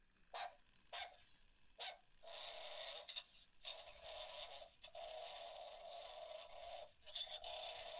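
A small electronic toy dog that makes noises, set off by pressing a button, yaps three quick times, then lets out a long, tinny, continuous barking-whine broken by brief pauses, loud with no one talking.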